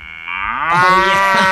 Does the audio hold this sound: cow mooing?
yes